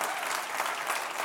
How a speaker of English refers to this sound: I love it. Oh, keep clapping. I love it.